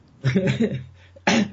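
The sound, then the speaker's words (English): A rough, throaty cough lasting about half a second, followed a moment later by a second sharp, harsh cough burst, both fairly loud with no talk around them. “There's a cough.”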